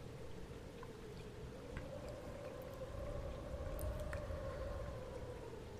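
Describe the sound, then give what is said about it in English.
Steady rain, starting to come down harder after a light drizzle, hisses continuously with scattered drop ticks, moderately loud, while a low sustained hum runs underneath. No one speaks. “Of course, just as I mentioned it, the rain is starting to come down a little harder.”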